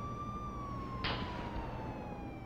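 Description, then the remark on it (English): A siren holds a steady, high wail that slowly sinks in pitch over a low rumble, with a brief hissing burst partway through. No one speaks. “Sirens. Gunshots.”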